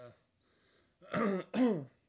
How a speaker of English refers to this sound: Excuse me, as I clear my throat.